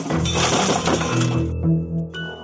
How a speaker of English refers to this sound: To make it look like a robbery, she threw a piece of firewood through the sliding glass door.